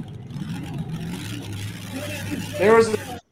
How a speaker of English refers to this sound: There's a certain sound that truck made, man. Yep. The pipes. Locomotion.